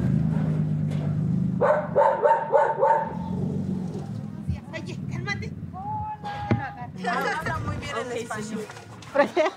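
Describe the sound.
Dogs bark excitedly in short repeated bursts, mixed with a lively clamor of overlapping voices of neighborhood children and adults talking at once, welcoming arrivals at a house with a gated dirt yard in Lomas de Poleo.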